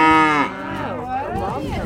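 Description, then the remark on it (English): A Highland cow in the south of Scotland lets out a single long, loud moo, its deep harmonic call bending down and rising again over nearly two seconds, with no talking. “People are obviously attracted to Highland cows.”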